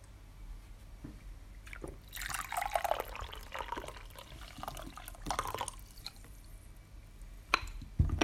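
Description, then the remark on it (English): Roasted bancha tea pours into a cup in a couple of bursts, a soft splashing trickle with brief pauses and a few faint drips, with no talking. “So I'm going to go ahead and pour this out.”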